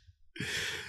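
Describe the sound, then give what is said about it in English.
A loud, breathy yawn right up against the microphone, a quick intake that swells into a long airy exhale. No one speaks. “just paused because I was yawning”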